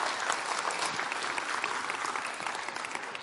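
Steady applause from an audience, a dense patter of many hands clapping at an even level throughout, with no voices standing out.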